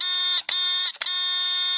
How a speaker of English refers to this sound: Three buzzes, four spoilers. That is the signal. Those are the horns.